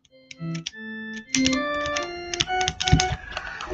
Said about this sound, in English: And then since everyone seems to be doing keyboards, I've got my Pico and a little keyboard going, and right now I've got it set up as a MIDI.